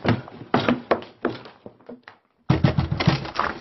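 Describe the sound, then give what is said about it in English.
Someone tries a locked connecting door to a neighbouring bedroom: a series of sharp thunks and rattles as it is pushed and jiggled, a brief pause, then another burst of knocking, rattling effort. “It's no good trying the connecting door”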